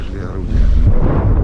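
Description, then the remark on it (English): A tank shell explosion rolls in as a deep, muffled boom, its low rumble swelling and lingering for over a second rather than cracking sharply, while medics load a man injured by shrapnel into a van on the road to Avdiivka. “Sometimes it rustles and then bang. That would be a tank.”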